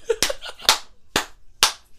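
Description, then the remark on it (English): Four sharp hand claps at a steady, unhurried pace, each one crisp and bright with a quick decay, with faint murmuring between them. “I applaud you, sir.”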